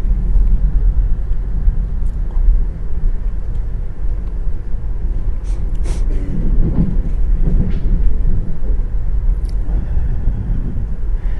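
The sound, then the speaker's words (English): A diesel train, heard from on board, rolls steadily along the rails with a heavy, continuous low rumble, punctuated by a few sharp clanks and clicks from the wheels. It stays loud throughout, with no voices. “Trains don't move as fast as some of you may possibly think. They're actually pretty slow.”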